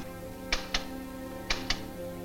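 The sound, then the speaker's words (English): A coded radio message heard as interference on the city's phones: two pairs of sharp, crackling clicks tap out a regular pattern over a steady, low humming static that runs throughout. No one speaks. “Sounds like the static I get on my radio. It's more than that. Oh, it's a message in code.”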